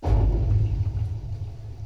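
A deep, sustained thunder rumble from the intro of a music album rolls continuously, heavy in the low end and fairly loud, with no voices present.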